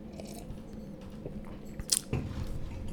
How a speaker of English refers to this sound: Let's have a sip of this coffee.